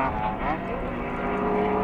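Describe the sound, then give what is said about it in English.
Loud race car engines of about 200 horsepower roar past on a track, a dense, sustained mechanical howl with whining tones that bend in pitch as the cars go by, overpowering. “And here come the cars again, so we're going to have to be quiet for the length of time it takes for the cars to go by, because they're so loud.”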